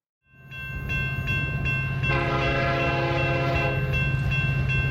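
A train rumbles steadily along the rails while its horn sounds, swelling into a loud sustained blast partway through over the continuous low roar of the rolling cars.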